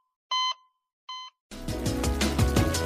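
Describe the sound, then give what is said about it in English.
Two short, bright electronic beeps sound alone against silence, evenly spaced, before a burst of busy music cuts in and fills the rest. “After all, it's not that first beep we're concerned about. It's this one.”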